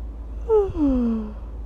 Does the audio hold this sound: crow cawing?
no